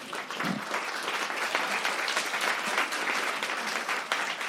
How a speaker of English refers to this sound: How many of those people just then were intimidated into clapping? There was a lot of people who were like, "We love this," and some people were like, "I'm absolutely going to go with it as well."